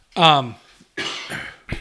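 A hard cough bursts out with a rough voiced edge, followed by a second raspy, breathy hack and a short final burst. No talking.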